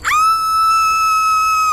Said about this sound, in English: Scream away, honey, okay? No one can hear you out here.